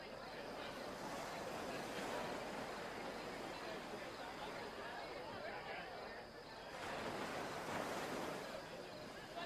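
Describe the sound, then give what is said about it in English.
Water lapping against a lakeshore in the evening in a steady, soft wash, with a short lull before the gentle splashing swells again, heard fairly quietly. “The water lapping on the shore.”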